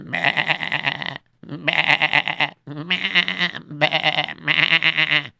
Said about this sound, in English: And the goats. We have two goats over there.